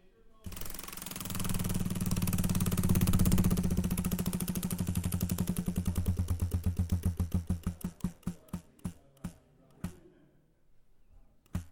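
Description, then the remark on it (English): A giant prize wheel in a studio clatters as it is spun, its rapid ratcheting clicks blurring together at first, then slowing into distinct, widely spaced ticks before coming to a stop. “Well, I mean, we're going to spin a giant wheel that we have here in the studio.”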